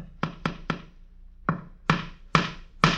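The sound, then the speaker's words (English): A man hammers a nail into a wall to hang a calendar picture of a horse, in St. Joseph, Missouri: three quick taps, a pause, then four heavier, ringing hits in a steady rhythm, each with a bright metallic attack that fades quickly. No one speaks. “The man is nailing a horse's picture to the wall.”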